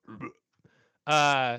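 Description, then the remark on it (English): A voice imitates a man leaning back and burping: a loud, drawn-out, half-second belch that rings with a throaty, buzzing tone after a couple of short mumbled sounds and a brief pause. “And he leans back and he burps.”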